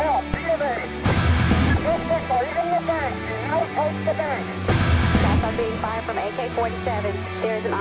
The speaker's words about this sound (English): From AK-47, there's an officer down. We're all pinned down by automatic gunfire.